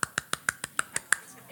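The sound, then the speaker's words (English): A quick burst of about eight sharp hand claps in a steady, rapid rhythm, roughly six per second, each crisp and fairly loud, with no talking; a demonstration of how a man clapped very fast instead of saying amen when a preacher made a good point. “there was a sweet little man that never said amen, but he would clap real fast.”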